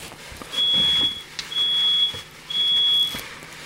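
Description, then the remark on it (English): A smoke alarm sounds three loud, steady high-pitched beeps of about half a second to a second each, evenly spaced, with faint room noise in between and no talking, going off again while nothing is cooking. “We got the smoke alarm going off again.”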